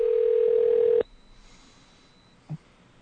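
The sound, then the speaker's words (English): A loud, steady telephone dial tone hums for about a second while a call is being placed, then cuts off abruptly, leaving a faint high whine and one brief soft blip near the end. “I dialed the wrong damn phone number.”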